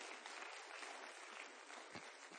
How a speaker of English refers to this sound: Let's give the fathers a round of applause real quick.